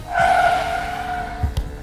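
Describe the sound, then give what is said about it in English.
Car tires squeal loudly and steadily for over a second as a vehicle takes a sharp turn in the dark, ending in a couple of low thuds and rumbles. “Quick, turn down there. Hold on to your potatoes.”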